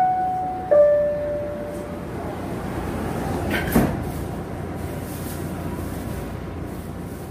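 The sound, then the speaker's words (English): A two-tone electronic chime sounds over steady rumbling station noise, followed a few seconds later by a single heavy thud as the doors of a PATH commuter train from New York to Newark Penn Station, Newark, New Jersey, slide shut, then the low hum continues. “I just hopped off the PATH train from New York into Brick City.”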